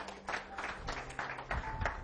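Audience applause: a steady, dense wash of many hands clapping together, fairly soft, holding an even level for about two seconds with no voices.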